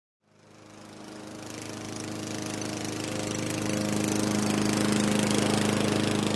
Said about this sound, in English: Night fell quicker than I could finish my yard work. I spent the last 5 minutes mowing in the gloom of dusk.